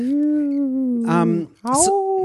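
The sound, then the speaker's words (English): A person imitates a wolf howl: one long, steady vocal wail, then a brief break and a second howl that rises in pitch before holding. “That was like a forest wolf.”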